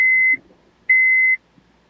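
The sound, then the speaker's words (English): Two loud, steady high-pitched beeps, each lasting under half a second, separated by a short pause, the repeating warning tone of a large truck reversing. “Are you backing up a fucking semi-truck, or... Is that a U-Haul?”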